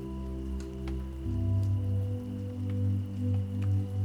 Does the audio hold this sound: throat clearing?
no